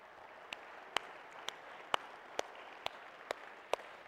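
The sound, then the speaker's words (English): An audience at a Mother's Day morning service gives a round of applause for the women and moms of the Waterstone family, a steady hissing wash of clapping with sharper single claps popping out at an even beat, about two per second. Fairly quiet, and nobody speaks. “Can we just give them a round of applause again this morning?”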